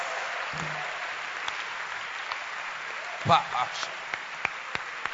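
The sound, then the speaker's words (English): An audience claps steadily to thank God, producing a dense wash of overlapping hand claps with a few sharper individual claps popping out; brief vocal bursts rise over the applause. “Now, since you are clapping, then just clap and thank God.”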